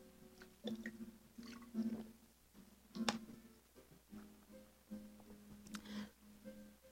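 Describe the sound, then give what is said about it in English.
Quiet sipping of water by a speaker: soft wet mouth sounds, slurps and a swallow spread over several seconds, with no one talking. “So let me take a sip of water and I'll get into this word for you.”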